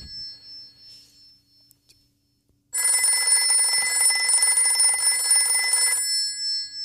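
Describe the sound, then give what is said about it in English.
A telephone rings with a steady electronic trill lasting a few seconds, loud, after a brief quiet lead-in with faint rustling. No one speaks. “Dial A for Adventure when our hero picks up that phone and there's some action waiting on the other side”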